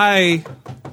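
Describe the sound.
A voice briefly speaks, then a few quick knuckle knocks land on wood, two or three light raps spaced a fraction of a second apart.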